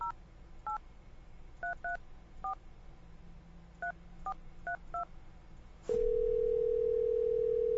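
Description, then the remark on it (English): A rapid series of about ten short two-tone telephone dialing beeps in an uneven rhythm as a phone call is placed, followed by a sudden click and a loud, steady low-pitched tone that holds to the end. No one speaks. “Call Andy and ask him if we can speak to the motorcycle.”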